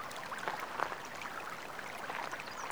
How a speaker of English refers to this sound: This incline makes the water flow faster. You continue to walk the gravel path, focusing on the sound of the water as it flows.